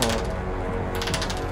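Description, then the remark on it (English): A dense clatter of many dice tumbling across a hard table, rapid overlapping clicks and rattles continuing steadily for a second and a half, fairly loud with no voices. “Why does there need to be so many dice?”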